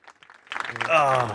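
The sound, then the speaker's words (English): A short clapping sound effect played for a trivia game contestant after a correct answer: a few faint, scattered claps, then a louder burst of applause with voices cheering or shouting over it, sustained to the end. “We're going to give you your clap.”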